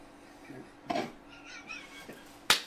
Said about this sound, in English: Actually, that was a really shitty clap. Let's do that one again. There we go. Now we got the sound we need.